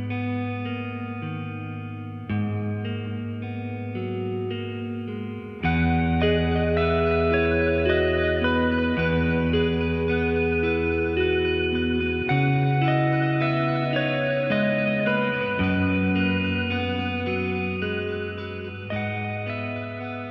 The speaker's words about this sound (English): The score here with its reverb-heavy guitar hits hard.